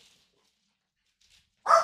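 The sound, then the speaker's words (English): Near silence with faint scratchy rustles of a puppy scratching at a door, then the puppy lets out one sudden, loud, short whining yelp at the very end. “Our special guest puppy is breaking the door down.”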